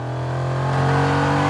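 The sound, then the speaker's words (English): A car engine in a scene from Cobra Kai hums loudly and steadily, then swells a little as it revs, its deep droning tone holding throughout with no voices. “This car isn't technically yours yet.”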